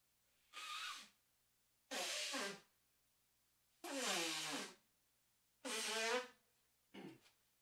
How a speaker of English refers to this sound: I gotta blow my nose again.